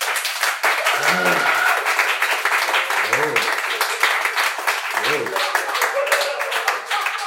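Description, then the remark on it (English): A crowd at a debate applauds steadily and loudly for about seven seconds to vote for a debater as the victor, a dense wash of clapping, with a few whooping voices rising and falling over it now and then. “If you believe he is the victor, please clap now.”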